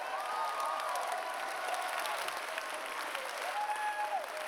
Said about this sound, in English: Give the Lord a clap and a shout in here.